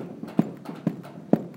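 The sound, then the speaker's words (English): Feet stomp on a floor in a steady rhythm, three heavy thuds about half a second apart with softer knocks between, fairly loud, with no talking, as a right foot is set back on the ground and stomped out after an ankle-rotation exercise. “And relax a foot back to the ground and stomp it out.”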